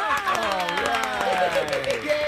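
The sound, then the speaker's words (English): A small TV talk show audience cheers and whoops on command with overlapping voices while scattered clapping runs underneath, loud for a couple of seconds. “Get ready to laugh and applaud on command.”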